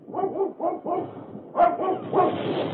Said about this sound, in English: A couple of the fellows with flamethrowers were moving up a short distance from where I hid out, and as they were about to continue on, they heard Buster barking. So they came over to investigate.